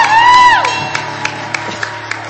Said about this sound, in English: so we want to give them a big shout out, a big round of applause.